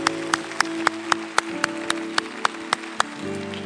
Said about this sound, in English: And so I want to applaud you and applaud what God's going to do through our church. Let's give the Lord a big hand what he's going to do in our church. Amen.